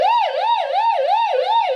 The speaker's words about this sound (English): Let's sound that siren one more time.